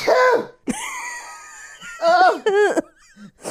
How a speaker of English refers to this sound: That's the biggest sneeze I've ever seen in my life. It looks like you sneezed out a bone.